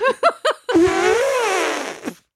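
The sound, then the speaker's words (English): A voice imitates a drunk elephant: three quick rising honks, then one long, buzzing, wobbly trumpet call that wavers in pitch before trailing off with a short final grunt. “No, that was a really good drunk elephant impersonation for sure.”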